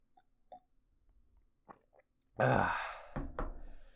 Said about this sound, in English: A little more tea. It's getting a little cold, but still tasty. One more sip.